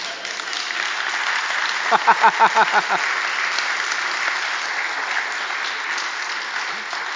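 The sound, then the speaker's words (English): A church audience applauds steadily for several seconds during a pause in a sermon, the dense clapping broken midway by a short run of rhythmic, louder low pulses before settling back into an even wash of applause. “That was me trying to find my place in my notes, not actually dramatic pause for applause, but that was good.”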